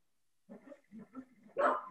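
Dogs barking in a quick run of short, yappy barks that build to one louder, sharper bark near the end, with no talking.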